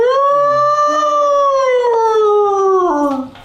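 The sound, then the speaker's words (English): A single long animal howl somewhere in the prairie holds a steady, mournful pitch for about three seconds, sliding gradually lower before dipping and trailing off at the end. It sounds loud and clear, with no voices. “It's about halfway into your shift when you hear the first howl somewhere in the prairie.”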